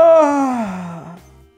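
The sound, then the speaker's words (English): A single loud, exaggerated yawn, starting high and sliding down in pitch over about a second before trailing off into quiet. “Yawning very loudly.”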